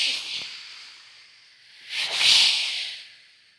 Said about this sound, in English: And then you probably just hear that first little gust. First couple of drops. And it just builds. The waves are crashing.